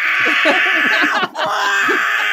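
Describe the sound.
A voice imitates a baby screaming, as heard from a phone inside the X-ray machine at an airport TSA security checkpoint: a run of short, wavering, high-pitched wails rising and falling for about two seconds, with a brief break near the middle, over a steady loud hiss.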